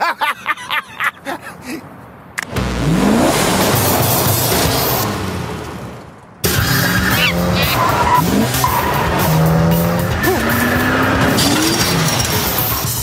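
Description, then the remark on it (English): A car engine roars loudly as tires squeal and skid, the car, driven by the Trunk Monkey in a Suburban Auto Group commercial, peeling away, followed by a second burst of revving and screeching tires that continues steadily. “Monkey can drive. That just happened.”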